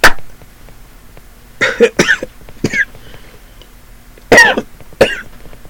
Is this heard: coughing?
yes